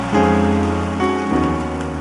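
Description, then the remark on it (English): An audience claps together in a dense, continuous patter that sounds almost like heavy rain, with sustained musical tones holding underneath for the whole two seconds. “Clap your hands and say, away, away, away.”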